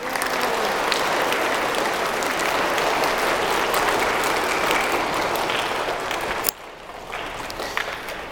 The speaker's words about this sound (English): Okay, so let's give him a round of applause.